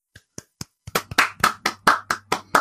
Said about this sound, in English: So that was me clapping. Everyone, let's go. Round of applause. 3, 2, 1.